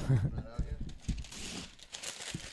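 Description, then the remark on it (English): Crisp rustling and crinkling of paper from a notebook being handled and pulled, a short burst of dry crackle over about two seconds, with indistinct voices murmuring underneath. “Can I get a piece of paper, real quick?”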